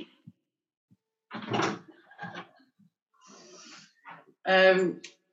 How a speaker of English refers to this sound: Oh, hang on, sorry, I've just got to let someone in the door.